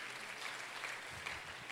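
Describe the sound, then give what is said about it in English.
An audience clapping together, a dense steady patter of many hands at a fairly even loudness, with no voices rising above it. “Oh, clap your hands and thank him for his word.”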